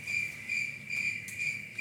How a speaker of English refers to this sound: I was like, Oh, we don't have that one. The cricket? We do have it.